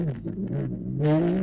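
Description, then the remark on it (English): A skiff vehicle loaded with passengers hums with a steady engine drone, then revs up sharply, its pitch rising as it zips off on a roughly two-minute flight to the facility through heavy, thick air. No voices. “it's about a 2-minute flight, quote unquote, to the facility as you guys zip through this heavy air.”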